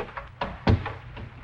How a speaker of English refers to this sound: Close the door quickly